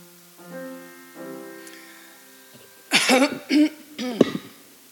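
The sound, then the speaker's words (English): Two low, voiced throat-clearing rumbles, followed by a burst of three loud, harsh coughs in quick succession, with no talking. “I gotta try to help my throat here.”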